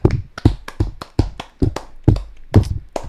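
A single person claps slowly and steadily, about ten sharp hand claps at an unhurried, lackluster pace, with no voices over them, clapping to introduce the first guest.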